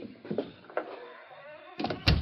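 An unlocked door is opened: a few metallic latch clicks and rattles, a short pause, then a heavier knock-like thump as it swings, with no voices.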